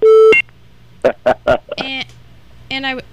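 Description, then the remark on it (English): A single loud, steady phone call-waiting beep sounds at the very start, short, signalling another incoming call during a phone call, then gives way to people talking. “What did just beep? We got a phone call?”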